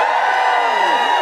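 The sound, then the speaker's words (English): An audience cheers and whoops loudly together when feminists who care about football are asked to cheer, a dense, steady roar of many voices with a few higher shouts rising above it, sustained for about a second without letting up. “Just give us a cheer if you're a feminist who does care about football.”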